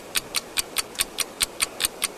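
A clock, started when a buzzer sounded, ticks steadily about five times a second, each sharp click bright and evenly spaced, with no voices over it.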